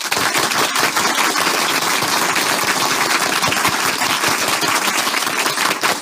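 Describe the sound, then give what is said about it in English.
Loud, dense clapping from several people runs steadily for about six seconds, a continuous crackle of overlapping claps with no pauses and no voices. “Yeah, I see somebody else clap too.”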